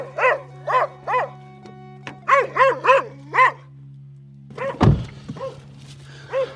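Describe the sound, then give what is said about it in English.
A dog barks at a door as reporters knock on doors, in sharp, loud bursts, first three, then a quick run of four, followed by a heavy thud like something hitting a door and a few more barks. “One dog does not like me.”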